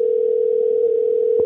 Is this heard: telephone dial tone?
yes